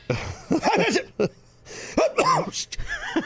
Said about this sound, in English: Don't do that. I almost sneezed.